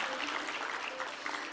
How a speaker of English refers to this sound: I need to take y'all with me to some of these churches I'm getting to preach in. They could use some amen and some applause and some cheers that you have to offer.